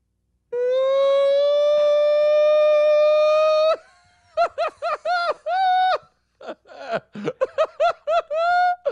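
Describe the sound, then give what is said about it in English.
A high, steady siren-like wail, made by a voice, holds for about three seconds, rising slightly in pitch, then breaks into rapid, choppy bursts of loud laughter. “The first 3 seconds are the siren.”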